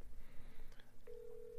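A telephone keypad tone beeps on partway through and holds steadily to the end, clear, as someone phones a friend for help, after a stretch of low background rumble and faint clatter.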